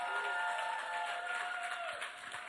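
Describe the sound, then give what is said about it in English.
A crowd applauds steadily for the singing stars, a dense wash of clapping that holds at an even level throughout, with faint cheering or whistling tones running through it. “Keep clapping for the singing stars.”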